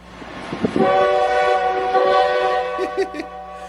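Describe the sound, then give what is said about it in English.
A train horn blares loudly and steadily for several seconds as a train passes, its sustained harmonic tone layered over rumbling wheels and rail noise. “Roger, you here to train?”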